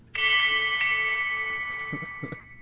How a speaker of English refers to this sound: so we need the bell.